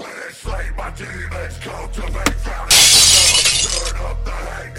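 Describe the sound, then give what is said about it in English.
Car glass smashes loudly with a bright, crunching shatter partway through, after a sharp impact, as two teams compete to smash cars within 15 minutes, over a steady low engine-like hum and background activity. “Whoever smashes the cars the most in that amount of time is the winner.”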